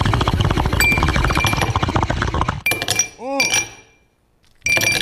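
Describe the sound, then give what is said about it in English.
Drinking glasses clink together in a toast in a shop, a couple of bright chimes with a short ringing tail, following a stretch of busy background noise and murmuring voices. “Yeah, let's smoke and drink.”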